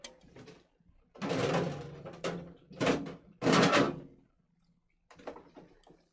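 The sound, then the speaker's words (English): A refrigerator door is pulled open to grab a La Croix, with a run of loud, noisy rattling bursts and clunks, followed by a brief quiet and a few fainter clicks and shuffles. “We're gonna go to the fridge and we're gonna grab a La Croix.”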